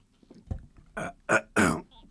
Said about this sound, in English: All right, hiccups.